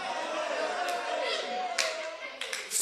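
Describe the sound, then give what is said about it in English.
Several irregular hand claps ring out as someone claps and prays, sharp and bright, with a louder burst at the end, over a steady background of indistinct voices and a low sustained tone. “as I clap and pray, tender.”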